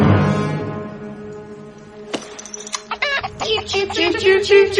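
A chicken clucking sound effect: a quick, busy run of sharp clucks that fill the last couple of seconds, after a fading humming tone and a few loud clicks. No one speaks.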